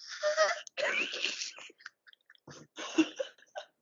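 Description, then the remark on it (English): A pet's breathy yawn ends in a high, squeaky whine. The stretched, wavering squeak is followed by a few short huffs and softer breathy snuffles, with no clear words. “He yawned and he went.”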